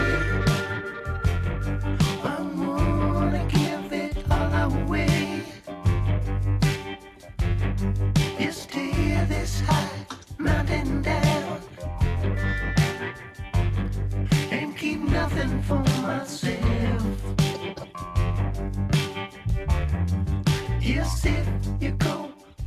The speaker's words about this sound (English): I got another really good jam. We'll go from quarter one to quarter two with some ….